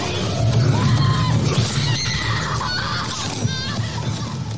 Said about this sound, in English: But most of all, screams.